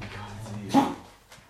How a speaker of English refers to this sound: This dog's choking.